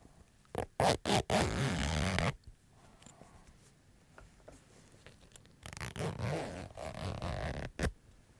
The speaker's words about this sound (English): Just a little clutch I keep on me. I'm just going to have to zip it open. Oh, that's very nice. Maybe I'll just zip it open and closed again, just for the sheer pleasure of that noise.